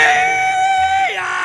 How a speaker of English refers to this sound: Yeah! Don't let me startle you. I'm just doing the rebel yell here to kind of kick things off.